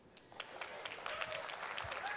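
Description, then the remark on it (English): Light, scattered applause from an audience, a mild golf clap: a soft patter of claps that stays fairly quiet and steady throughout without building to a loud ovation. “That's a mild golf clap at best.”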